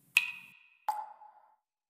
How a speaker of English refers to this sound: Cue water sounds.